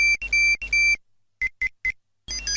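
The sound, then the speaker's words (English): A Tamagotchi virtual pet chirps a high, bright electronic melody of steady beeps, then pauses and gives three short separate bleeps before the tune starts again. “If anything, it probably triggers all these memories of going, oh my God, I've forgotten to feed my Tamagotchi.”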